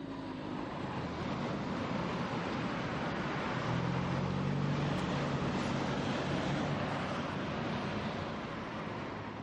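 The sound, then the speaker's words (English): A steady, continuous roar of road traffic played from a sound recording to create the illusion of a distant road with no cars, a broad wash of rumbling noise with faint low drones swelling midway, holding even for the whole stretch with no voices. “So from a distance, when you can't see it, I've had people up there that are convinced they hear a road in the distance. And they do. It's just there are no cars.”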